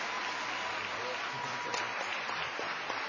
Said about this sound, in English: A big round of applause